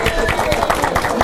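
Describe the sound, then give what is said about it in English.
An audience applauds the actors, a dense, steady wash of many hands clapping at once, fairly loud throughout, with some murmuring voices mixed in. “Okay, round of applause for our actors.”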